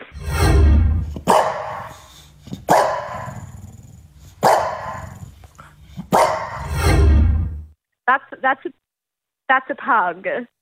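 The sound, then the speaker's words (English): A dog growls and barks loudly: a few sharp barks break through a low, rumbling growl, followed after a pause by several brief, higher-pitched vocal bursts. “I thought it might have been in a French bulldog.”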